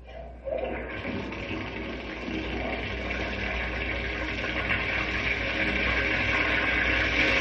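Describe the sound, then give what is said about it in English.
Water gushes from a faucet into a model river with a model dam built across it, in a steady, broad hissing rush. It starts abruptly after a brief quieter moment and swells slightly louder as it keeps running, with no voices. “Now, when I open the faucet and let the water flow into the river, the dam stops the water all right.”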